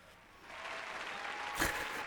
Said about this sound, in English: They loved. You know, sometimes the best applause comes from when you don't think the conversation's going anywhere, but then the crowd just really reacts and it feels good.